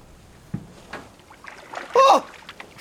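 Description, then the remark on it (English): A few light splashes and sloshes of water as a person puts their foot into very cold water, about 40 degrees, from an anchored boat, followed by a short, sharp vocal exclamation near the end. “I'm gonna go put my foot in.”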